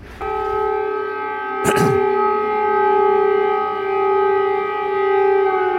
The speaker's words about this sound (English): That was shortly followed by this, the sounds of air raid sirens across the capital city of Kyiv.